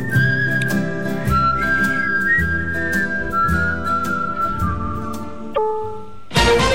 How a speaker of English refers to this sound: Come on in, we'll whistle for you.